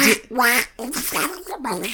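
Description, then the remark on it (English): A voice imitates Donald Duck rapping, spitting rapid, raspy, quacking syllables in short rhythmic bursts, loud, with brief pauses between phrases. “To be fair, no one's ever asked me to rap like Donald Duck before, so that was a first.”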